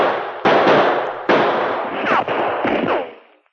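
Gunshots ring out in an exchange of fire, from a gun in the shadows under trees: two loud, sharp blasts, each trailing off in a long rumbling decay, followed by two smaller cracks before the sound fades away. No voices.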